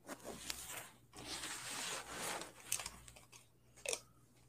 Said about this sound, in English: I hear a lot of shuffling over there. I don't know if it's your mic or... Oh, you know what it is. Hold on. Yeah, it is my mic.